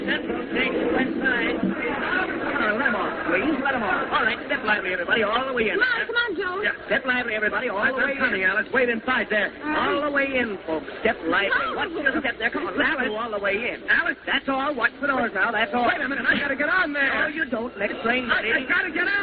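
A dense, continuous crowd babble fills a busy subway station at Grand Central, many voices overlapping at once with no single speaker standing out, steady throughout.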